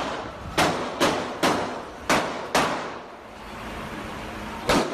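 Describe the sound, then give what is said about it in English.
Five sharp, loud gunshots crack in quick, uneven succession during college country night at the Borderline Bar and Grill in Thousand Oaks, California, followed after a pause of about two seconds by a sixth, over a steady murmur of background noise. “That piercing sound, it's gunfire.”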